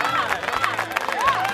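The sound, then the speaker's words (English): Modest audience applause at an awards event as a presenter is introduced, a steady patter of clapping with crowd noise and a few faint rising whistle-like tones, lasting under two seconds. “thank you for the introduction, and thank you for the somewhat modest applause.”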